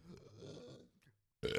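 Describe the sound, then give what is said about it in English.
A low, rumbling burp drawn out for most of a second, fairly loud, followed by a short pause and then a burst of louder noise at the end. “Dude, I got to burp so damn bad, like a big to let it out.”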